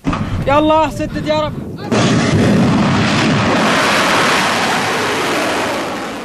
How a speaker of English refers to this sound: This is footage released by Houthi military media. They claim it shows the launch of the missiles and drones from an unidentified location in northwestern Yemen.